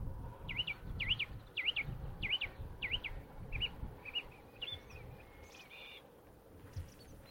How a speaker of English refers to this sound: Well, that's a song thrush. He's going through his repertoire.